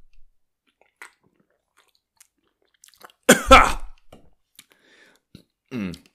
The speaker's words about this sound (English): Hold on. Let me sip my rosé.